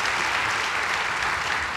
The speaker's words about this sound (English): And while you're clapping, how about a big hand clap for all the parents who've endured online education?